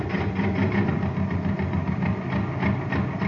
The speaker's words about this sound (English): Hey, you want to have some fun, gang? Listen to this jet cycle.